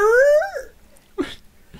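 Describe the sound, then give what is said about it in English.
A person imitates a dog screaming in slow motion, as in a slowed-down film shot of a dog in mid-air: one drawn-out, low, wavering wail that slides downward and fades, followed by a brief breathy sound and quiet. “In the PG-13 edit of this movie, there's, like, a slow-motion shot of the dog just in the air as he's screaming.”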